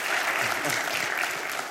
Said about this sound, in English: So I just want to say thank you guys so much for your generosity and for praying for us, okay? And on behalf of, go ahead, let's all clap. Yay. Woo.